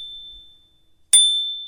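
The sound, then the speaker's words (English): A bicycle bell on a bike in Berlin, Germany, is tried out and rings once with a sharp, bright ding that lingers and fades slowly. A faint high tone hums in the background, and no one speaks. “As is trying out the bell.”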